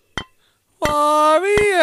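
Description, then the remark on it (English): Champagne glasses clink in the background of a phone call in three sharp, bright taps, the first on its own, the next two over a sustained, steady pitched tone that shifts slightly partway through. “Then there was a laughter, and then glasses clinking in the background.”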